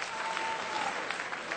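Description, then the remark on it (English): A Def Comedy Jam crowd claps steadily as audience members who have dogs are asked to clap, a dense wash of many hands applauding at once, fairly loud and continuous throughout the short stretch with no voices standing out. “Clap your hands if you got dogs.”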